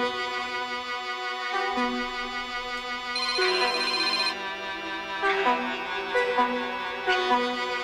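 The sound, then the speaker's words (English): A phone ringtone plays a bright, melodic electronic tune that repeats steadily for several seconds with no one picking up. Nobody speaks. “Nigga ain't answering.”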